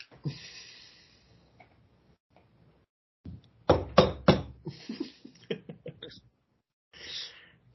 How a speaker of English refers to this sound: All right, let's go knock on Hesha's door. Let's go bug his royal highness.